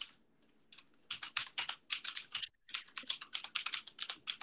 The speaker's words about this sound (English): Keyboard clacking.